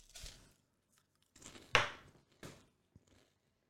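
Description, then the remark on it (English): Crisp, crunchy bites of Cheese Nips cheese crackers, a handful of irregular crackling bursts with the loudest in the middle, then softer chewing crunches fading out, with no talking. “I need to finish my cheese nips, by the way.”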